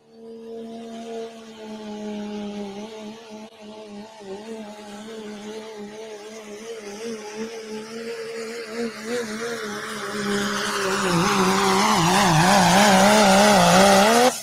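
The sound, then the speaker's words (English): A heavy Dodge diesel pulling truck, a farm truck from Mineral Wells, Texas, with rear duals and a 3-inch smooth bore turbocharger, roars steadily under load during a truck pull. Its deep harmonic drone wavers and then builds louder and more strained toward the end, with no voices. “How many of you's Dodge diesel runs that good?”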